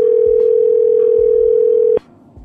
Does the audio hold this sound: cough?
no